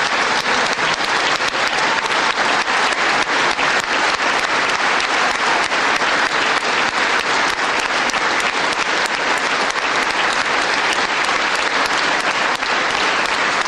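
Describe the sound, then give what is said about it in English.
Sustained, loud applause from a large audience, a dense unbroken wash of clapping that holds steady for about fourteen seconds with no talking over it. “There were a lot of applause breaks.”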